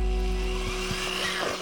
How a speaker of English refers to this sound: You're gonna get a drill and you're gonna drill out these holes. Make sure you have your safety goggles on. It's a very soft metal, so be careful.